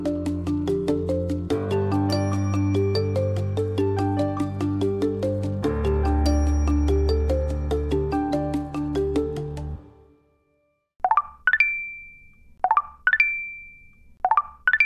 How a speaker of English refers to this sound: If you're hearing that sound, you're probably also seeing It's a Match come up on your phone screen. And if you're not too sure what it is, you've likely not contributed to the 3 billion daily swipes on the dating app Tinder.